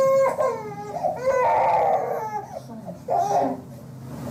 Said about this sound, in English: It started with cussing, then you hear slap noises, and his crying changes from a distress cry to a pain cry.